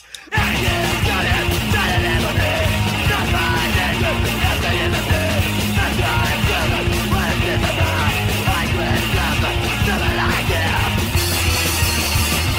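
A raw, loud early hardcore punk band recording plays without pause: dense distorted guitars, steady pounding drums and what sounds like shouted vocals, all mixed thick and noisy for the whole stretch.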